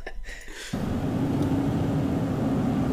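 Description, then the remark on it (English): A steady low engine drone and road rumble fill the space, like riding inside a moving car, kicking in abruptly after a brief quieter moment and holding evenly loud to the end. “It's car interior.”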